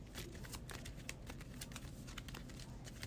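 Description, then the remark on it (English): A deck of cards being shuffled mid-game, a steady run of quick papery riffles and flicks lasting a few seconds, fairly soft, with no voices. “Shuffle this up real quick.”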